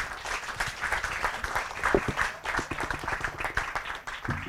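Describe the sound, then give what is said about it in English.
An audience applauds in a steady, dense round of clapping that fills the whole stretch at moderate loudness, with individual claps blurring into a continuous patter and no one speaking over it. “I think that deserves a round of applause as well, right?”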